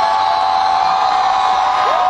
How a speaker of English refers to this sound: She comes out on the stage as you can hear the crowd going crazy over her